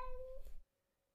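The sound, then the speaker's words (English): A single short, soft, curious cat yowl, clear, with a rising then steady tone lasting about half a second before cutting off into quiet. “The cat lets out a softly curious yowl.”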